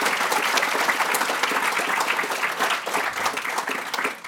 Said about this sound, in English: If you could just join me now in giving him a very warm round of applause, welcoming.